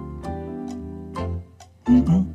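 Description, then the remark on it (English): Tense countdown-style music with sustained low tones under a steady clock-like ticking, each tick sharp and evenly spaced, swelling louder near the end as brighter brass notes come in. “It felt like it was time to put you on the clock a little bit.”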